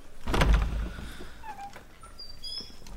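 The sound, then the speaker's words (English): A door is pulled open with a heavy clunk of the latch, followed by a thin, squeaky creak of hinges as it swings, moderately loud. “What are you standing there for? Open the door.”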